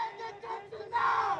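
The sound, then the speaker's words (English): A crowd of voices chants "End detention now!" in unison at a rally in Georgia, with short, rhythmic syllables growing louder toward the end. “At a rally in Georgia to mark his first 100 days in office, Biden addressed protesters in the crowd”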